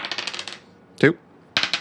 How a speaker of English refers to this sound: So, you start by rolling one die. An advance is 6+.